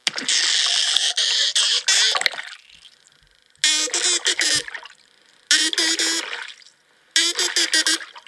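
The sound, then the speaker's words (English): Dolphin burst sounds underwater: four loud, buzzy bursts of rapid pulsed squawks, each lasting about a second or two, separated by short quiet gaps with faint watery background. “This is what dolphin burst sounds sound like.”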